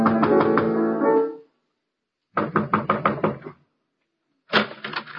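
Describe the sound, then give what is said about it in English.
A sustained tonal sound gives way to a quick series of firm knocks on an apartment door at the top flight of a walk-up building, roughly six sharp raps, then a pause and another loud knock, with no talking. “Here, this is the door.”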